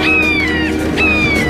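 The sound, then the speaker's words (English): Two shrill, drawn-out red-shouldered hawk calls, each sliding slightly downward in pitch, ring out loudly one after the other over a steady low rumble, with no talking. “Yes, it's the red-shouldered hawk, a beautiful butio, a genus of raptors characterized by robust bodies and broad wings.”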